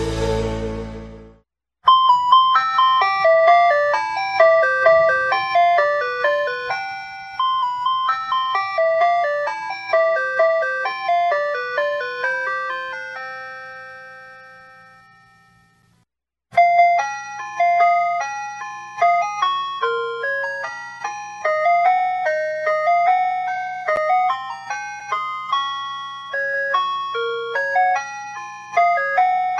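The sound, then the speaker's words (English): A tinkling ice cream truck jingle plays a bright, repetitive chime melody, pausing briefly midway before starting the tune again. It's loud, with no voices. “It's ice cream truck music bringing us back in from the break.”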